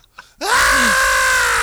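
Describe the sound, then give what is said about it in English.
A voice imitates a banshee scream: after a brief quiet breath, a loud, sustained wailing shriek erupts and holds steady without a break, raw and piercing. “Just a banshee scream, but I will look like this.”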